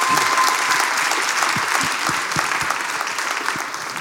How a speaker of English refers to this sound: Actually, let's give him a round of applause for supporting her.